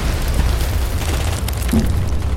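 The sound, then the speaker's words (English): A laser blast explosion as a ship fires a bright laser that hits three tanks, slicing right through them: a loud, sustained roar of dense, crackling noise over a deep rumbling low end, holding steady for about two seconds with no voices. “A bright laser shot out and hit three of the tanks, slicing right through them. The blast was so huge, it knocked all three of us back and rolling down a small incline.”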